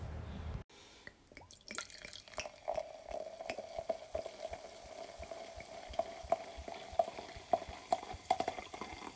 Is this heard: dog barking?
no